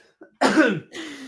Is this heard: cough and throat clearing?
yes